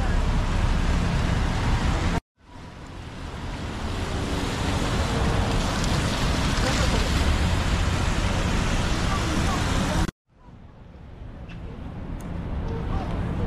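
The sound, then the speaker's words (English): Steady winter rain hisses across a city street, mixed with the rumble and wash of passing traffic. The dense noise cuts out abruptly twice, then swells back in. “Doesn't feel very much like winter out here right now with the rain.”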